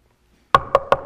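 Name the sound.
knocking on a door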